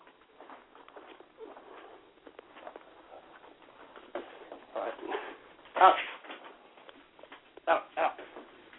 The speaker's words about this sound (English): Sorry, I've got an attack of dogs here right at the last second.